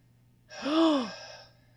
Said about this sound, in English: I don't like how heavy he's breathing right now. He's afraid. He's genuinely afraid. This man's about to have a panic attack.